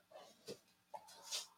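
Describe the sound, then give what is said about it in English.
Dogs that have just come into the room move about, making a few faint, short snorts and whimpering noises, with a brief hiss of breath near the end and no one speaking. “Well, while you're doing that, all right, dogs, get out.”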